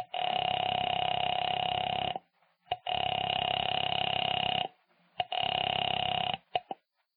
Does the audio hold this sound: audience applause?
no